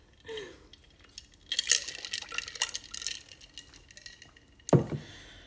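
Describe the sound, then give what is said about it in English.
Soft slurping sips of coffee, a quick cluster of wet sucking noises, followed by a solid clunk as a ceramic mug is set down on a hard surface. “Let me take a sip of this coffee.”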